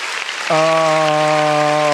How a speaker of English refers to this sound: Round of applause to all you guys.